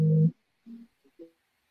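A steady electronic tone from a man's phone receiving an incoming call sounds loudly for a moment, then cuts off, followed by a few shorter, fainter tonal blips spaced apart, with no talking.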